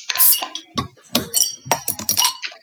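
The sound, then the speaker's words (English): A glass clinks and rattles repeatedly, with several sharp, bright chinks spread irregularly across a couple of seconds, as a beer glass is handled and knocked while a Scottish ale is opened. “Let's grab our beer. Let's grab our glass and let's open her up.”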